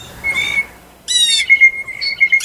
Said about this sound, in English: The first part of it sounds like a blue jay, but the last part does not. They don't make that second sound.